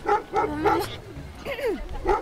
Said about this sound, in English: Be careful, Huffy. That is a big dog.